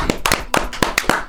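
Hands clapping, about seven sharp, bright claps in a slightly uneven rhythm, fairly loud and with no voices over them.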